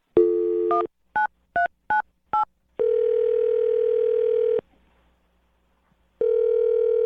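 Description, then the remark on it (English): A steady telephone dial tone, then four quick keypad dialing beeps in a row as a caller dials a man's number, followed by long, even electronic ringing tones broken by a short pause. No one speaks. “I'm going to dial him right now and see what he has to say, okay?”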